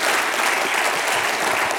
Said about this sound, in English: If you believe that, would you give God a hand clap of praise tonight?